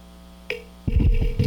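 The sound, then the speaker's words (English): A steady, low electrical ground loop hum drones throughout, with a brief high chirp partway in, then louder rumbling, clattering bursts take over the second half while the hum continues underneath. “Somebody says, your audio is a ground loop hum.”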